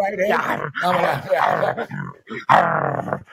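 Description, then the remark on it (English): A person vocalizes a snarling, angry wolf-like growl, loud, in several rough, throaty bursts over a few seconds, with short breaks between them and a final forceful snarl. “Yeah, the wolf sounds angry. He's pissed.”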